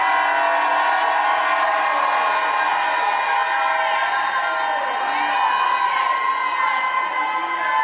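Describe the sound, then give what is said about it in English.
A large crowd at a religious healing service roars with sustained shouting and cheering, a dense wall of voices that stays loud and continuous for several seconds, with scattered whoops rising above the din. “Come on, if you believe it, shout like you never shouted in your life.”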